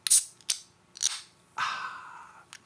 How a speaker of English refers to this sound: Do you always go, when you open a can like that? I think I always do.